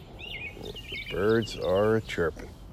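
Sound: birds chirping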